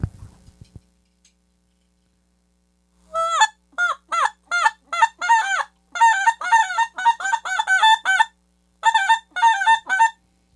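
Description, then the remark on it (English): A goose call blown by someone still learning to use it, in a long run of short, nasal honks, loud, some spaced out and some rapid-fire in quick clusters, with no talking over it. “Ain't you got a goose call there somewhere? I can't blow it really, but I can try.”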